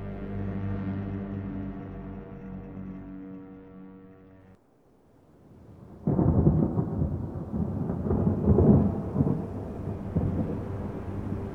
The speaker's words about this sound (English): Rain fell that day from clouds that scarred the sky like bruises on a newborn skin. It washed away the dust and the rot and the smell that lingered over Val de Havre, a thin strip of land somewhere north of Reims.